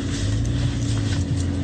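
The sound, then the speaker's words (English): A car engine runs steadily at idle after being jumpstarted in a neighborhood, a continuous low droning hum with a constant rumble and no voices. “But he basically helped jumpstart this guy's car around his neighborhood, which is nice of him to do.”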